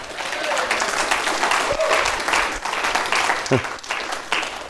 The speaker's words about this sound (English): Give the Lord a hand.